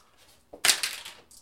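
Two dice clatter onto a table for a notice roll in a quick burst of sharp, bright clicks and rattles that tumble for about half a second, then settle, with a faint tick trailing after.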